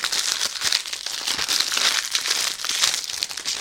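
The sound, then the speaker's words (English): A microwave popcorn paper bag crinkles and rustles steadily as it's handled and opened, a continuous crackly sound filled with small sharp crackles, with no one talking. “And let's open up, see what's inside.”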